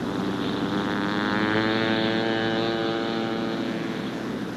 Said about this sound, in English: I use the engine to thrust the plane forward to keep us moving.